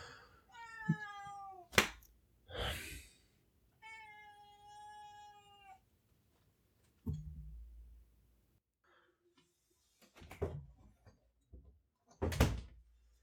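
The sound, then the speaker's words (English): A pet cat meows twice in long, drawn-out wails, followed by a door thudding and some clattering and shuffling noises. “Don't be meowing, all right?”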